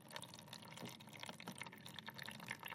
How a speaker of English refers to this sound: So we're putting one blob of the plasticine into one of the tanks, And water is now trickling out into the bowl.